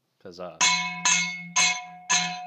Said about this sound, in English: Should I hit the closing bell? Hmm. Oh yeah. That's the closing bell.